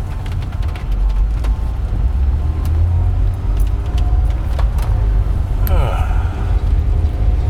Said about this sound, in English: I just had to squeeze past a car that did not understand that you should only really be in one lane at a time, especially when you're stopping at an intersection. But we made it, got around it.